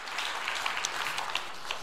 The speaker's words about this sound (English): If you believe in that and you receive it, give the Lord a great hand clap of praise today. Would you do that?